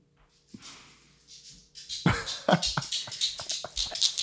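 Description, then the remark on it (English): A faint hiss and soft rustle give way to a quick run of heavy, thudding footsteps of a person running fast in slippers, loud and steady, stomping in a fast running rhythm until the end. “Add sound effects of his feet. Doof, running. Doof, doof, doof.”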